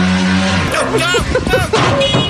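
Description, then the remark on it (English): A motorcycle in Bhopal skids while trying to avoid hitting a dog, with loud, wavering tire screeches over engine noise, followed by a clatter of impact as it hits the front of a Subaru, fairly loud, with faint voices underneath. “This one's another motorcycle. This guy's trying to avoid hitting a dog.”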